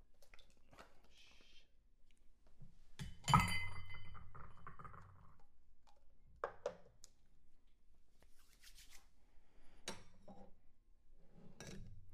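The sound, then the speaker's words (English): Ice rattles and clinks against a chilled rocks glass as the ice and water are dumped out with a splash, then a single ice cube drops into the rocks glass with a clear clink, followed by a few faint glassy taps. “I've been chilling my rocks glass here, so I'm going to dump out the water and the ice. And we're going to put an ice cube inside.”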